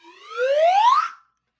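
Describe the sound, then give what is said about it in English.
A single loud whistle blast, blown to summon dogs, rising steadily in pitch for about a second before cutting off, heard on its own with no voices around it. “Blow the whistle to summon the dogs.”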